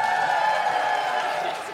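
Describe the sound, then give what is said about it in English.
A live audience applauds and cheers in a steady, dense wash of clapping that holds at an even loudness throughout, easing slightly at the very end. “Everyone give it up”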